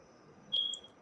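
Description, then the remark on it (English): A single short cricket chirp rings out over a quiet background, a thin high-pitched trill lasting under half a second, fairly clear. “I was heard a cricket.”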